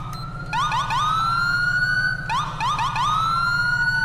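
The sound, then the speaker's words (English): A police car siren wails loudly, rising in quick chirping sweeps before settling into a sustained high tone, the pattern repeating twice over a low engine rumble. “I've been meaning to change the sirens, because the sirens are kind of outdated.”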